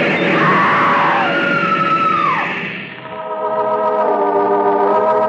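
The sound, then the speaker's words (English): A woman screams loudly on a train platform, a long piercing shriek that rises and falls, dips briefly, then swells into a steady, strained wail for several seconds with no talking. “The woman screams.”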